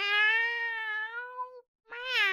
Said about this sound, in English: If that ain't a cat in the bedroom there, I ain't never heard one.